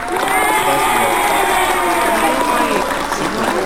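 A studio audience cheers and claps steadily for a few seconds, a loud, dense wash of whoops, voices and applause that holds level throughout without pausing, applauding Aurora, Illinois being named one of the happiest cities in America.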